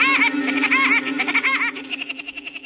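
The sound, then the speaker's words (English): An acorn woodpecker calls from a dead oak tree in a loud, nasal, laughing series, rising-and-falling notes repeated rapidly, then breaking into a quicker stuttering chatter toward the end, with no other sounds. “He doesn't sound exactly like Woody Woodpecker, but this acorn woodpecker was probably the model for the cartoon character.”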